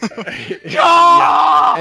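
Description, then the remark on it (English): A man lets out a long, loud, strained scream of frustration, held for over a second after a brief burst of muffled vocal sounds. “that was probably the most legit con scream you actually got in the whole movie”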